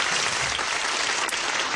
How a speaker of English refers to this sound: Round of applause.